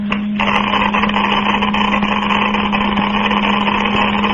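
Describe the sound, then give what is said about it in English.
A Geiger counter crackles with a rapid, dense stream of clicks that blur into a steady rasp, riding over a constant low electrical hum for the full few seconds, with no voices. “Unless this machine is busted, unless this Geiger counter has forgotten its multiplication table”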